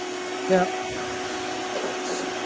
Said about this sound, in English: Okay, here I'm gonna vacuum.